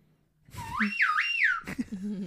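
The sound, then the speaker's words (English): A slide whistle swoops upward, dips and rises again, then slides back down in one quick, fairly loud phrase, followed by a short burst of low, murmuring sound. “Well, I just love you playing the slide whistle.”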